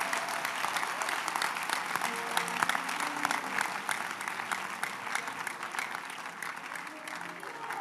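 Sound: audience applauding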